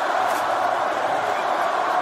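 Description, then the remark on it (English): A stadium crowd cheers the Brisbane Lions' win, which sends them to the 2023 AFL Grand Final against Collingwood. The cheer is a dense, continuous roar that holds steady and loud for the whole stretch, with no single voice standing out from the wash of sound. “The crowd are going to soak this up.”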